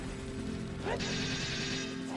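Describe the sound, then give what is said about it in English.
A video game Megaton Hammer smashes into a monster: a swooping whoosh into a loud, crunching impact that rings out as a noisy crash for about a second over a steady game soundtrack. “Smashed him with the Megaton Hammer.”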